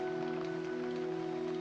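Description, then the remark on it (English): Steady rain falls in a continuous, even hiss with no pauses, accompanied by a faint sustained hum underneath. No one speaks. “Annie, what is it? The rain.”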